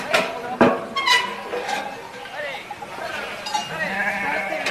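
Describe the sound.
A flock of sheep arriving at the bottom of a mountain bleats in overlapping calls, several voices at once, with faint clinking bells and a busy outdoor background as farmers and shepherds sort out the animals.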